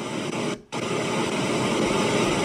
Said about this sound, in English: By the way, guys, I hope you can tune out this loud-ass fucking rain. This shit is fucked. Sound like some fucking golf balls is, you know, hitting my car and shit over and over.